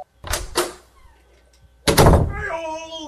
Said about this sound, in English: Hang on. Let me go get the door.